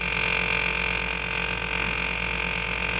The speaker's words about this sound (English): All I hear is that same steady noise. It isn't exactly a noise. It's more of a self-satisfied hum. Well, pal, it might sound like a hum to you, but to me it's nothing but a loud noise